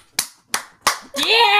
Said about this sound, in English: Insert clap sound effect.